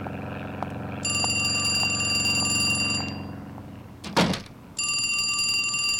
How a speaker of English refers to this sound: Hey, the phone's ringing. Yeah, well, it does that sometimes.